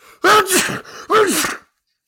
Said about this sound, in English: That was me sneezing out the demon that is Pauly Pumpernickel.